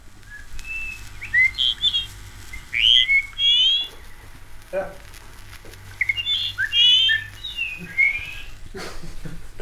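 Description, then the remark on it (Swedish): Recorded birdsong plays from a record in two bursts of bright, warbling chirps and trills, with a steady low hum and faint background clicks beneath. “En skiva med fågelsång.”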